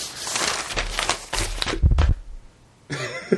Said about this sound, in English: You want to shuffle a few more papers in front of the mic there?